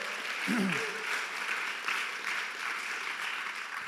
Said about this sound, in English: Come on, if you receive that, why don't you clap your hands for the word of God.